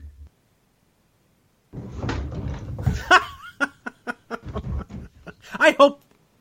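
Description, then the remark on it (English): A series of sharp knocks and clatters as someone bumps into a hard plastic Virtual Boy console, several quick impacts in an uneven rhythm, with some muffled rustling and vocal sounds. “I think it hurt the Virtual Boy more than it hurt me.”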